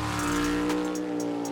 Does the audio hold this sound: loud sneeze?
no